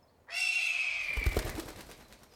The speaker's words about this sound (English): What was that? A bird. Heron, perhaps. They make a hell of a screech in the dark.